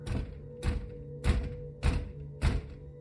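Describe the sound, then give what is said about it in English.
Five heavy, evenly spaced thuds of someone pounding on a front door at around 11 p.m., each a solid booming knock, with a low steady hum underneath and no voices. “when we heard a loud bang on the front door.”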